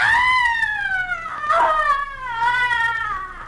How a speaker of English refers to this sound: A young man has just entered the darkened interior, and as he moves across the room, he hears a sudden, blood-curdling shriek of frustration and anguish coming from another part of the house.